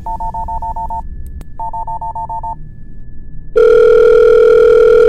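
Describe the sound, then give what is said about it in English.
Two short bursts of rapid, evenly pulsed telephone beeps, then a loud steady dial tone that hums on to the end. No one speaks. “I think you'd better stop playing with the phone, sir.”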